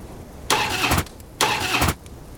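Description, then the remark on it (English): A motorcycle engine turns over in two short, loud, rasping bursts as the ignition is turned, each about half a second, with a brief pause between them. No voices are present. “And you hear it thrum to life, the engine purring, filling you with a sense of memory and satisfaction.”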